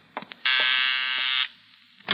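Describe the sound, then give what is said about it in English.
A harsh electric doorbell buzzer drones steadily for about a second, loud and raspy with a dense, buzzing tone, bracketed by a few short clicks and knocks before and after. “Quickly, you place it behind your desk, where it will be safe until you dismiss whoever is at the door.”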